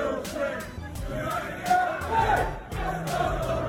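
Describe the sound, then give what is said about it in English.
A large crowd of football fans outdoors around the team entrance of a stadium, a dense roar of many voices chanting and shouting together, with sharp bursts and vertical streaks of noise punctuating the steady din. “The area surrounding the entrance that the teams use have now been taken over by the assembled crowd.”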